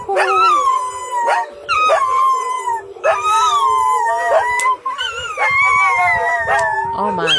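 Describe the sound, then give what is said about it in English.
Several dogs howl together in long, wavering, overlapping cries, loud, rising and falling continuously with short breaks between bursts, out in the countryside while sirens sound in the background. “My dogs, you hear them howling.”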